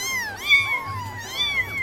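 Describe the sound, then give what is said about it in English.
A chorus of kittens on a roller coaster mewing over one another in rising and falling cries, with a steady low rumble of the ride clattering along underneath. “A roller coaster full of kittens.”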